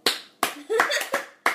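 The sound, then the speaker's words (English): Five sharp hand claps in a steady, moderately paced rhythm, each a crisp slap with a quick decay, with a brief murmured voice sounding between the second and third claps. “Why are you clapping?”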